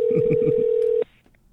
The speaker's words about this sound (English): All right, I'm dialing. Here we go.